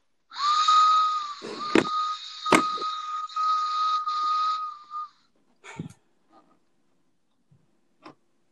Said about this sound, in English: Do you guys like my train whistle?